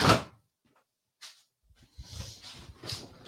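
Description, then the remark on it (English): A door shuts with a sharp thud at the very start, then a pause, a faint brief knock, and a stretch of shuffling, rustling movement. “Close the door.”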